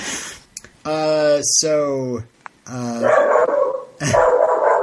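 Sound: dog barking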